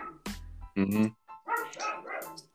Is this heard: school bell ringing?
no